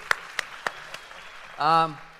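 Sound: audience applause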